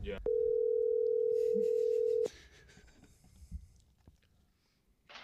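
A steady, loud telephone dial tone holds a single pitch for about two seconds, then cuts off abruptly, leaving faint room noise and small rustles.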